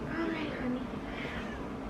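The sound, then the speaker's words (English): An upset male cat, being held by a person, meows in a drawn-out complaint, with voices in the background mixing in as the whining continues for a couple of seconds. “I just force love on cats.”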